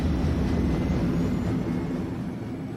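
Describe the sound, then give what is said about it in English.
A deep, steady engine roar of a massive flying train blasting off into space from a plaza, loud, with a dense low rumble that holds constant throughout and no voices. “boarded the train and blasted off into space”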